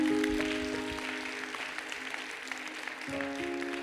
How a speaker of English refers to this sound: Clap your hands to him. Amen.